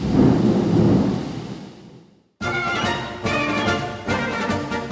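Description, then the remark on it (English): A deep, rolling thunder rumble from a torrential thunderstorm in Boykin, South Carolina, swells loudly and slowly fades over about two seconds, followed by a brief silence and then music with steady beats. “where I was stopped by a wonderful torrential thunderstorm.”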